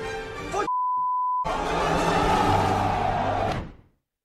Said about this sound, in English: I had to beep out the name because they say the name of the movie there.